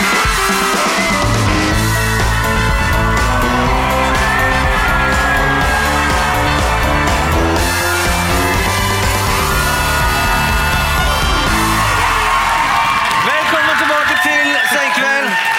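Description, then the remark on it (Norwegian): An audience at Chateau Neuf in Oslo cheers and whoops in welcome as the hosts walk in, a loud, steady roar of many voices with high shouts rising through it, holding for about fifteen seconds without letting up. “Vi går inn og får fantastisk velkomst av publikummet vårt, som nok følte de var med på noe ekstra spesielt.”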